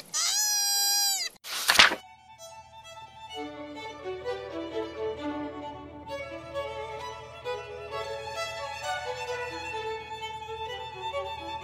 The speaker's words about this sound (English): Koalas may be cute, but in fact they are extremely noisy. That is an actual koala bear after it was thrown at the tree by another koala bear.